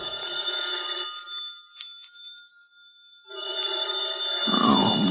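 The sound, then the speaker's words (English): A telephone bell rings in loud bursts, with a short quiet pause between rings where a faint tone lingers, then the ringing resumes. “I was working on my fifth drink when the phone rang.”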